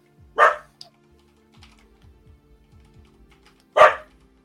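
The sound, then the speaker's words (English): A dog barks twice, two loud, sharp single barks a few seconds apart, with faint tapping and low thumps in the quiet stretch between them. “Oops. Yes. Doggy time.”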